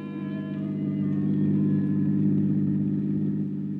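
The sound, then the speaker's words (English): A car engine hums steadily as the car takes off, a low mid-pitched drone that swells slightly as it revs, with no voices present. “I shut the door, headed once more for my car. The lady of the house was waiting. We took off.”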